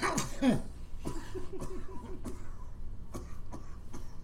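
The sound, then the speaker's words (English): A person lets out a string of harsh, irregular coughs after smoking, mixed with breathy, laugh-like gasps, the bursts continuing unevenly for several seconds. “Don't die. Don't cough. You good?”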